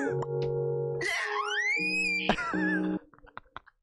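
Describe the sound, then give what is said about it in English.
A man's loud, angry scream in an edited video, heavily processed and distorted, holds for about three seconds with its pitch sweeping up and back down, then cuts off abruptly into faint scattered clicks. “That dude's angry. I need to hear the scream again.”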